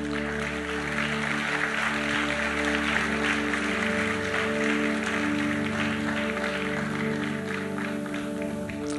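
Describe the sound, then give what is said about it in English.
A church audience applauds people who serve the community, in a dense, steady wash of clapping that holds at an even loudness throughout, with a low sustained hum running beneath it. “We applaud you today, and we say that you are our heroes.”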